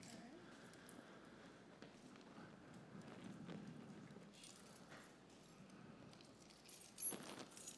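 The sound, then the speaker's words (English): Keys jangle and clink repeatedly as a person handles and sorts through a key ring looking for the right key, a steady metallic rattling with one sharper, louder jingle near the end; no one speaks. “Now I'd like for you to look through the keys and see a little bit and see if you can find the right key.”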